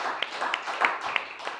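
An audience applauds, a dense wash of many hands clapping at once, with a few sharper individual claps standing out above the steady patter.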